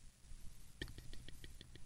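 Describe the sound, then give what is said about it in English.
A sharp mouth click, followed by a rapid run of softer, evenly spaced little clicks against a quiet, faintly hissy background with no talking. “Oh, that was my mouth just now.”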